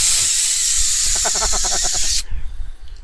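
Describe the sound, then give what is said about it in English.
A person makes a loud, sustained hissing noise with their mouth, imitating a bursting steam vent, holding it for about two seconds with a wavering middle before it cuts off sharply. “Sound like a steam vent bursting.”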